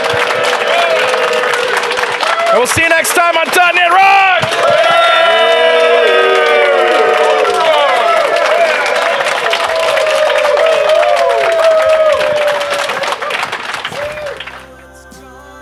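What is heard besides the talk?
audience applause and cheering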